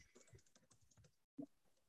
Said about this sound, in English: I'm not used to typing on this keyboard.